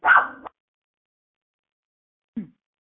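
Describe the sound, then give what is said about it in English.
A dog lets out a sharp, loud bark, then after a long silence gives a couple of shorter, lower yips. No one speaks. “and maybe don't have your dog there when you do.”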